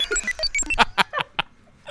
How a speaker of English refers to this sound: You want me to calculate the scores? Yes, you know, turn on the calculating computer. Computers! Beeps! Boops!